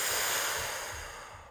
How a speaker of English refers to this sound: And I want you to breathe in and breathe out.